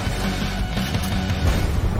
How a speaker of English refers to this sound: Fakest explosion I've ever seen.